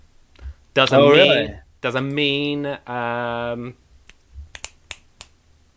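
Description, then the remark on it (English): A voice sings a few sustained wordless tones, then a quick, uneven series of about five or six sharp finger snaps and claps rings out alone, crisp and moderately loud. “Snap and clap. He's really good at that.”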